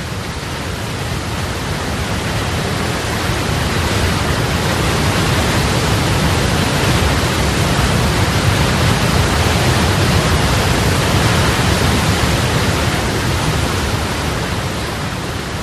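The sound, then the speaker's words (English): A roaring, deafening waterfall: a loud, steady wall of rushing water that holds constant for the whole stretch, with no voices over it. “So a waterfall is quite deafening, and yet it's powerful.”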